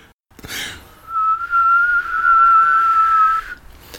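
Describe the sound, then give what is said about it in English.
A tea kettle whistles with a loud, steady, high-pitched tone that holds for a couple of seconds with a slight wavering, after a brief breathy hiss, then cuts off. “Saved by the tea kettle.”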